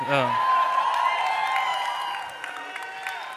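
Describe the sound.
An audience applauds with a dense wash of cheering and whooping voices over the clapping, loud and steady at first, then easing off slightly toward the end.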